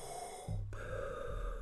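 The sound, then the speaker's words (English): A person makes a heavy, rasping breath, imitating Darth Vader's respirator-mask breathing, one long drawn breath with a low hum underneath. “Darth Vader breathing.”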